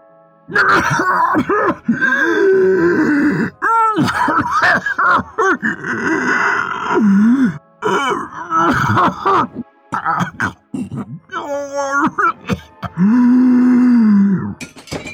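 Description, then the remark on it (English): A man's voice acts out choking: strained coughs, hacking, drawn-out groans and ragged gasps, loud, in irregular bursts with brief pauses between them. “His coughs and gasps grew louder.”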